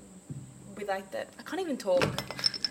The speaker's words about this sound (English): You're knocking everything around on the table.